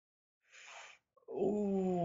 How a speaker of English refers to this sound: Can you hear a dog barking? Yeah. Yeah, that's next door. I can't do anything about that. Sorry, guys.